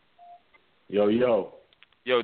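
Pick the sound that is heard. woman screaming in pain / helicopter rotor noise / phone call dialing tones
phone call dialing tones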